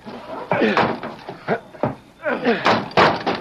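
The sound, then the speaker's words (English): A locked wooden cabin door bangs and thuds a few times in a Lone Ranger radio drama scene, with people talking over the sharp knocks and scrapes. “The door is locked. Come on.”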